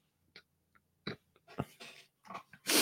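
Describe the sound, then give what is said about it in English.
A quiet, stifled burp among a few soft mouth and breathing noises, short muffled bursts with gaps between them, ending in a louder breathy rush. No one speaks. “Sorry, I had to burp quietly.”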